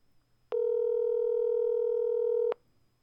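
A steady telephone dial tone hums for about two seconds as a phone call is placed, starting and stopping abruptly, loud against a quiet background with no talking.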